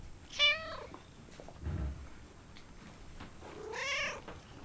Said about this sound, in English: Oh, this is a cat that lives in a barn, and it's about to get more than it bargained for.